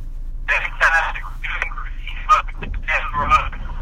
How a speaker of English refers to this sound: Sounds like he has some bad service